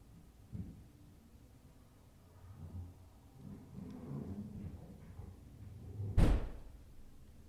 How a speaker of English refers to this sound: Okay, that sounded like a bang on the wall to me. That wasn't a door. That to me, that sounded like something scooting. It could be. It could be a piece of furniture hitting the wall. Sounds like you're scooting something. Or like a drawer slowly